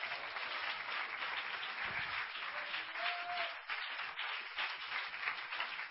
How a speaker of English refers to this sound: Clap your hands to the Holy Ghost.